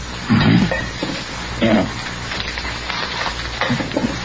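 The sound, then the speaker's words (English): Keys emptied from someone's pockets are set down on a table in two soft clunks, with a few lighter rustles and handling sounds over a steady hissy background. “Keys.”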